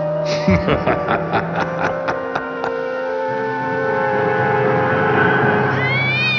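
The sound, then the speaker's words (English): A cat named Malachi lets out long, strained, distressed meows while being squeezed too hard, with a series of sharp rhythmic clicks early on and a steady low hum underneath. “You're hurting him. Have you never held a cat before?”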